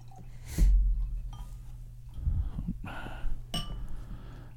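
A bottle of 11% ABV beer, aged about a year on toasted coconut and rye whiskey-soaked French oak cubes, clinks once against glass, then the beer glugs and fizzes as it is poured, with a brief hiss of foam and another soft clink near the end. No one speaks.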